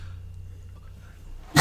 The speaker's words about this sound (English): Bless you. Sorry. Bless you.